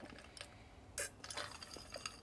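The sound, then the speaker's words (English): Someone takes a drink of water: faint sipping and swallowing with a light clink of a glass, a few short soft bursts with no talking. “My throat is a little bit dry, so I'm gonna take a drink of water.”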